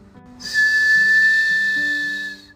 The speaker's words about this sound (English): The engine let out a sharp whistle, and the conductor hollered, "All aboard!"